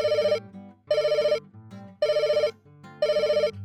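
A telephone rings loudly in four short, evenly spaced bursts with brief pauses between them, a bright trilling bell tone and no voices.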